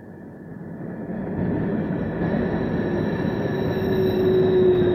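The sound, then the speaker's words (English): A freight train rolls past with a heavy, steady rumble that grows louder, while thin, sustained high-pitched brake squeals ring over the clatter throughout, with no voices. “That's the brakes.”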